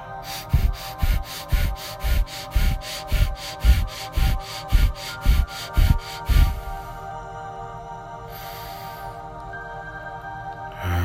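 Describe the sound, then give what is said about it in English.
A breathing exercise: about a dozen quick, forceful breaths in a steady rhythm, then a pause and one longer, softer rush of breath. No one speaks. “There's different breathing techniques that you could do, family.”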